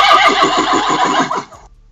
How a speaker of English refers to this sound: Yeah, that's Earl on his horse riding the ranch.